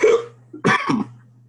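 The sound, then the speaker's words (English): Two sharp hiccups a moment apart, fairly loud, the second longer and breathier, over a faint steady low hum with no talking; the hiccups are put down to drinking beer. “Oh, just hiccups and...”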